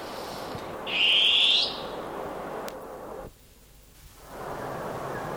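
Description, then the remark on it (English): A long-tailed cuckoo gives a single loud, harsh, rising screech lasting under a second, standing out above a steady hiss of background noise, with no talking. “Oh, beautiful long-tailed cuckoo.”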